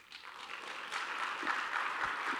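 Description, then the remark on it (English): A crowd applauds steadily, a dense wash of many hands clapping at once that holds at a fairly constant, moderately loud level throughout, with no voices breaking through. “You can clap for each one of these things. I think they each deserve a round of applause.”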